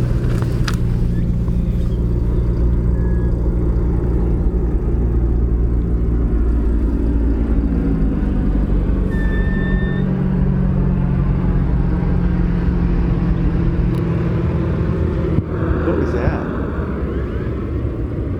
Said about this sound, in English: Tell you, the plane I think messed up the recording on Merlin.